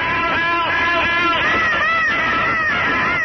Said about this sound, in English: Voices screamed in every room. Help!